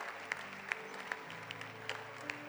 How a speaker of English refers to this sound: Church, we can clap better. These are brave. Whoever gives their life to the Lord is a brave person.